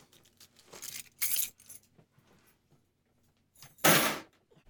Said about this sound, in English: Of course, my coffee table being a white marine igloo cooler. So let's just hear a little audio of take one and some keys hitting a cooler.